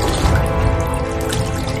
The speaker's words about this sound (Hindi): मैंने फिर भी थोड़ा लगा कि मैं थोड़ी कन्फ्यूज्ड हो ही होंगी, मे बी मैं थक गई हूँ इसलिए मैंने कुछ इमेजिन कर लिया होगा, इसलिए मैंने फिर से अपने मुंह पे पानी मारा।